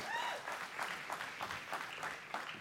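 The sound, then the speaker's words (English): A crowd claps together in sustained applause, a dense wash of many hands for a couple of seconds, fairly loud and steady with a few brief cheers or voices mixed in. “Y'all give them an awesome hand clap.”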